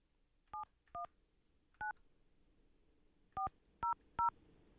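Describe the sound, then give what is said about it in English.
Six short electronic telephone keypad tones sound one after another at an irregular pace as a number is dialed on a phone to make a call, each a brief dual-pitched beep, with a pause midway and the last three coming quickly together. “Do I have to dial 9 to get out on this phone?”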